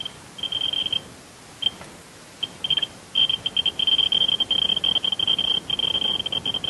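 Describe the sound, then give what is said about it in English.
A very sensitive Geiger counter, held up to a pendant worn on a person's chest, ticks at an extremely low radiation level in high, chirpy blips, sparse and irregular at first, then quickening into a dense, rapid patter of clicks for the second half. No one speaks. “So that might sound like a lot of ticking, but in fact, this is a very sensitive instrument, and that is an extremely low level that most Geiger counters would be right at the bottom of the scale.”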